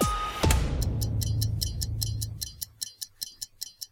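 A clock ticks steadily and evenly, its crisp clicks emerging as a deep rumbling thud and low hum fade away, leaving the ticking alone and fairly quiet by the end.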